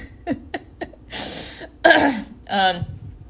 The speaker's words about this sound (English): So much that I have to clear my throat.